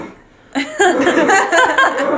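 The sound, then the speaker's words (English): A voice imitates a strained, wheezy laugh that breaks into rough, phlegmy coughing sounds, fairly loud, starting after a brief quiet moment and continuing in ragged bursts. “And then this weird strained laugh as it coughs up some phlegm.”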